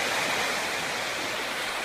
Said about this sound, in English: For some of you that have only lived in Iowa all your life, this is the ocean. This is what it does.